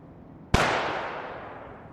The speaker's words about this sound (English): Cerberus, you hear a sniper shot from the roof of the building. Just kind of sudden, no one seems to react to it, but suddenly there's just a loud bang. And, Storm, you in fact hear off in the distance an echo of a gunshot.